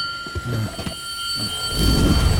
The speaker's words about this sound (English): Check out the Bell of Icon.